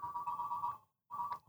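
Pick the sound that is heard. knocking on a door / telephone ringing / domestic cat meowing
telephone ringing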